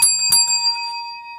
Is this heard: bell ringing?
yes